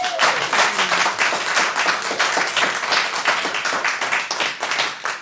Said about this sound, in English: Give Grey Wacky Tabacky a round of applause.